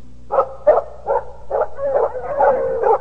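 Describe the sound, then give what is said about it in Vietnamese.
Dogs barking in a steady string of about seven sharp, fairly loud barks: one dog barks first and then many others join in, the later barks running together. No one speaks. “Bỗng có tiếng chó sủa.”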